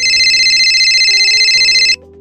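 A loud electronic phone ringtone as a call is placed to two friends: a bright pulsing trill over a simple melodic line, stopping abruptly after about two seconds with no one speaking.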